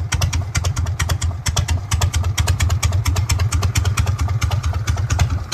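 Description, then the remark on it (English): A Harley-Davidson motorcycle engine idles, a loud, deep rumble with an uneven, loping beat of exhaust pulses that continues steadily throughout, with no voices. “Now the Harley-Davidson. That's what we're going to talk about, a polarising motorbike, but also legendary, made so by movies like Easy Rider back in 1969, and the motorcycle with the unmistakable sound.”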